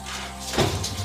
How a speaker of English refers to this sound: have just entered through the front door.